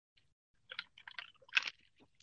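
Quiet mouth sounds of someone taking a sip of a drink: a short cluster of wet clicks and slurping noises, then a soft swallow, with no talking.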